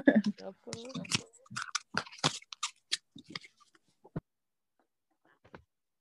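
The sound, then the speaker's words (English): Someone shuffles a deck of oracle cards, with crisp rustling snaps and scattered taps that thin out toward the end; a voice is heard briefly at the start. “I'm going to shuffle.”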